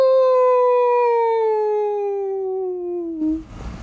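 A wolf lets out one long, sustained howl, loud and clear, its pitch sliding slowly downward for about three seconds before it breaks off into faint rustling noise.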